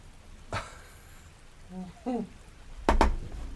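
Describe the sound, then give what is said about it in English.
Steady rain hisses throughout, with a few sharp, loud splashing taps standing out above the wash. Brief murmured voice sounds come through faintly in the middle. “With the rainwater? With the rain.”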